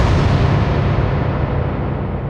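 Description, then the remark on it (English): Loud, rapid 9mm gunshots fire in quick succession inside a family home, blurring into a dense, rumbling barrage that carries on for a couple of seconds with no voices. “Relatives, young and old, cower inside the house as Willie sprays 9mm bullets everywhere.”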